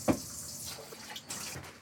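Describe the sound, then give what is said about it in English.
Water runs steadily from a tap onto rice in a container, filled up to the first knuckle of a middle finger, a soft continuous hiss with a few brief splashy bumps, fairly quiet, with no voices. “Okay, and now I've added my water to the standard unit of measurement for water on rice when you're not using anything else, which is it's going up to the first knuckle on my, I use my middle finger”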